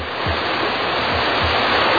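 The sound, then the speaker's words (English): Fire hoses coupled to pumpers spray water at full blast from all angles, a loud, steady roar of rushing water filling the whole clip, a dense continuous hiss of powerful jets, with no voices. “Pumpers are ready. All hoses coupled up. We'll flood that thing with water from all angles.”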